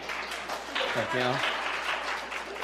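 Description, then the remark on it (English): An evening audience claps for a speaker coming up, a steady, dense patter that runs the whole way through, with a brief voice calling out over the applause partway in. “I didn't get quite the clap tonight as I did this morning when I came up.”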